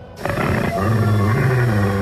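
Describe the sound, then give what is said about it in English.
A loud, deep growling roar from an unknown creature, something between a dog's growl and an elephant's trumpet, swells up and holds for nearly two seconds, unaccompanied by any voices. “It was something between a dog's growl and an elephant's trumpet.”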